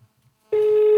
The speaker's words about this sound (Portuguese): Pedro, atende o telefone, Pedro.